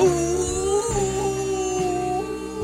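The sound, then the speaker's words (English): A person lets out a loud, sustained, wavering howl like a dog, the voice sliding in pitch and holding long drawn-out notes for a few seconds. “You sound like you're howling.”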